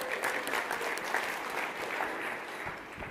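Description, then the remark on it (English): An audience applauds in a steady, dense wash of clapping that holds at an even level for a few seconds without letting up. “By the way, round of applause.”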